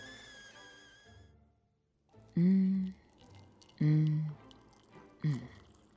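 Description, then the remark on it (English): Freshly boiled water pours in three loud glugging bursts about a second and a half apart, following a fading high whistle-like tone and a short quiet pause. “The water is done.”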